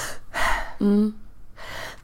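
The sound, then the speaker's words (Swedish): A person gives a deep, audible gasp, a sharp rasping intake of breath with a brief voiced catch, then another breathy rush of air. Fairly loud, deliberately imitating gasping for air as an anxiety symptom. “Jag går, heter man så här, när man hispar efter, när man så här. Ja, kippar efter annan typ.”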